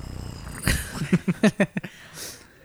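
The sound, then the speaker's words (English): A person imitates a cat purring, a short burst of rhythmic, throaty rumbling pulses that fade into a soft breathy exhale. “You purring actually calms her down. She looks at you. Wow. And she purrs even louder.”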